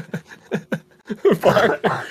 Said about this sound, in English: I'm sorry, I wasn't going into a coughing fit right at the end.